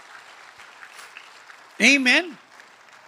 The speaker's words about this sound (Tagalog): Ngayon ang pumalakpak mga tao rito.